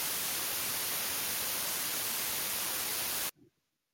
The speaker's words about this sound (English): Oh, still got a problem. It's like white noise I'm hearing. I'm not sure why.